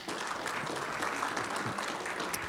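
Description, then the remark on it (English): A church audience gives the Lord a hand clap after a prayer, many overlapping claps forming a continuous crackling wash of steady, dense applause at an even loudness throughout. “Don't forget, give the Lord a hand clap.”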